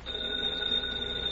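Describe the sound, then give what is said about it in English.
A telephone rings with a steady, sustained high-pitched tone that holds evenly for over a second, clear, with no one speaking. “Grab my phone if it rings, will you”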